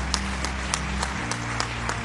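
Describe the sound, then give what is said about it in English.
An audience claps in a steady, even rhythm, sharp beats about three per second over a soft wash of scattered applause and a low, sustained hum underneath. “Clap well, or if you want to clap.”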